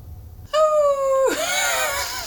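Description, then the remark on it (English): A person imitates a mournful dog howl: one loud, sustained high note that bends downward, then trails off into a rougher, strained wail. “That's a very mournful dog.”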